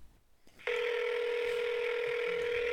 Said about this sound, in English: I don't know what happens if we call this 800 number. we should try. I mean, the last time I called an 800 number from Playboy, it was from 76. Where's your phone? Put it on speaker. Let's do it right now. All right, let's see what happens.